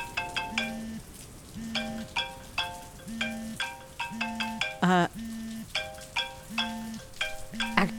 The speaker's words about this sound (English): Hang on, that's me. Let me just throw my phone out the window. You're not even going to see who's calling? No, I probably should.